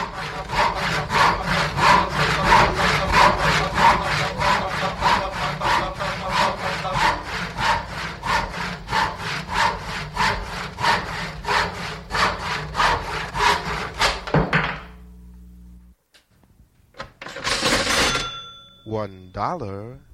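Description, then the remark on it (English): A hand saw cuts steadily through wood in rapid, rhythmic back-and-forth strokes for about fifteen seconds, loud, then stops, followed by a brief scraping and a few clattering noises; heard partway through a song. “And then halfway through, you get sounds of a saw or a drill or doors opening.”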